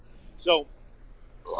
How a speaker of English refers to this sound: that … just burped